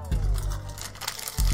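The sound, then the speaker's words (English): Loud rustling and crinkling of a piece of paper being grabbed and crumpled, with bursts of crackly noise across the short clip and a low rumble underneath. “Sounds like paper, right?”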